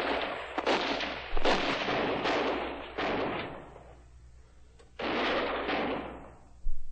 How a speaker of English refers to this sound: I hope you never have to see the Colt's revolver fired at night. But if you do, you will remark how bright the muzzle flashes can be, how they can light up the sudden violence of jumping, frightened horses as three tired and angry men attempt to